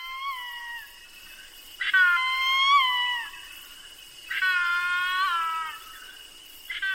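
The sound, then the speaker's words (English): A hornbill in the rainforest understory gives loud, drawn-out wailing cries, two long harmonic calls and the start of a third, ringing out over a steady hum of insects, in warm, humid air with light rain falling. “But suddenly, you're startled by a wailing cry up in the understory.”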